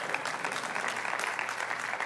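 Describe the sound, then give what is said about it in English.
An audience clapping together, a dense, steady patter of many hands that stays at an even, fairly loud level for a couple of seconds. “Yeah, that's worth clapping about.”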